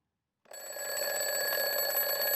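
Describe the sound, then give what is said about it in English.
A mechanical bell alarm clock with a bell on top and a hammer going back and forth starts ringing after a brief silence, a loud, continuous metallic clatter with bright, high overtones that holds steady to the end. No one speaks. “The one that has a bell on top and the hammer is going back and forth.”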